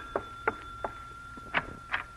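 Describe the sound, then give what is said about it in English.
A front door bell rings shortly after 8 o'clock at night, in five quick, uneven strikes over a steady high-pitched tone, each strike sharp and metallic, with no voices. “And then shortly after 8 o'clock that night, the front door bell rings.”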